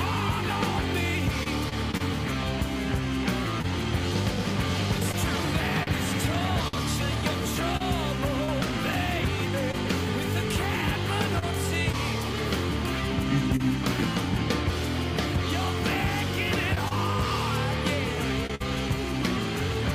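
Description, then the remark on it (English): A loud rock song plays continuously, with dense full-band instrumentation and a lead electric guitar soloing over driving drums and bass at a steady, unbroken volume. “But yeah, I'm going to play a little bit more of the song.”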